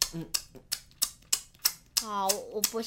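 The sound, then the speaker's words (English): A voice imitates a work colleague's loud open-mouth chewing as he stuffs food in his face: about nine sharp, wet smacks at a steady, quick rhythm, with short voiced hums mixed in near the start and end, fairly loud. “I've got a colleague at work who eats with his mouth open. So as he's eating, he'll crumple his little whatever it is and stuff it in his face and go...”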